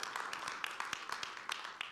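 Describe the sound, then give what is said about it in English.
An audience at Tri-Village Church gives a round of applause for online viewers and guests, many hands clapping in a dense, steady patter of sharp bright claps that holds at an even level throughout, with no voices standing out. “Let's just go ahead and give a round of applause to those of our family tuning in and guests.”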